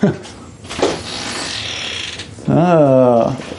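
A door is opened: a scraping, rattling latch mechanism for a couple of seconds, followed by a loud, wavering, tonal creak of the hinges.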